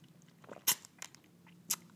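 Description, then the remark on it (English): Sips and swallows of cold water: quiet wet mouth sounds with three sharp clicky gulps spaced irregularly over a couple of seconds, no talking. “hang on, let me have a sip of water. A bit of ASMR for you.”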